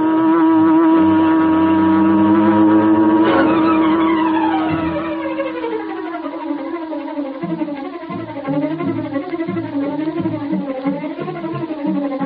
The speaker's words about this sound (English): As Bleeker's car swung into the street and turned toward Schaefer's parking lot, a huge sleek black car started along behind them. It was the car of the Green Hornet.